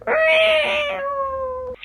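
A single long, drawn-out cat meow, loud, holding a steady pitch that slides slightly downward before cutting off abruptly.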